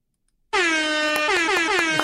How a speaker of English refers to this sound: there's some air horns for Sean Cunningham